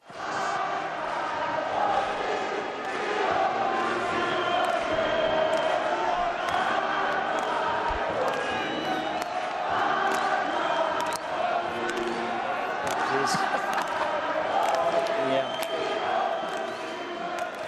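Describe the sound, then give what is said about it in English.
A large South African cricket crowd sings a patronising, mocking song in unison, a loud, steady wash of many voices carrying a tune with scattered shouts mixed in, lasting the whole stretch without pause. “I think maybe this patronising song from the South African crowd sort of sums it up.”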